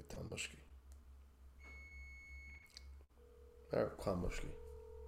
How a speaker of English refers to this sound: You guys hear the oven beeping?